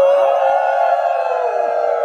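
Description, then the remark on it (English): A group of children howl like wolves together, their overlapping voices holding one long, loud, steady mid-pitched note for about two seconds without a break. “Wolf. Howl!”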